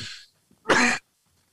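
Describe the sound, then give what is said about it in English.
A single sharp, explosive sneeze bursts out, loud and breathy, preceded by a brief hiss of intake and followed by silence. “Bless you. Thank you.”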